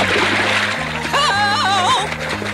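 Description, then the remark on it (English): A loud splash of a character slipping on a puddle and sliding into a swimming pool, with churning water over steady cartoonish music and a warbling, sliding tone partway through. “runs into the puddle and tosses all the little balls and slips on the puddle and slides into the pool.”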